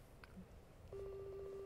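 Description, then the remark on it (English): A steady electronic ringing tone of an outgoing Instagram call starts partway through and holds at an even pitch, with faint background noise and no talking. “Why is it a ring like that? That's it's Instagram.”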